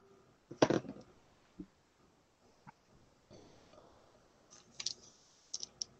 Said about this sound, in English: Which dice are we in here? Would you just like roll nicely, please?